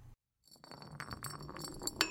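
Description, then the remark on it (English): A bright green glass bottle clinking and rattling, a busy run of bright clinks and taps after a brief silence, with one sharper clink near the end; no talking. “What is this? A bright green glass bottle.”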